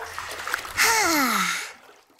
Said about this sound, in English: Cowy takes a nice, warm bubble bath